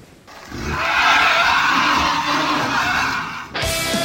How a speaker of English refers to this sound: Oof, it's got cold out here. Well, you know, it is the ocean. You can never tell just how fast the weather might turn.